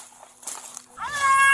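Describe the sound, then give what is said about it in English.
A deer caught in metal wires cries out with a loud, high, wavering bleat that rises in pitch and holds, almost like a baby's wail, following a few seconds of soft rustling and scuffing, recorded on a body camera. “That's the deer. Sounds like a baby.”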